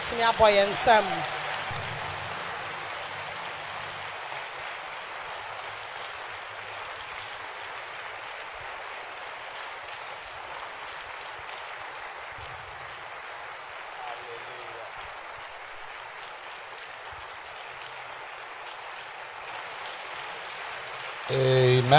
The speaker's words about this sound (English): Can we clap our hands in church?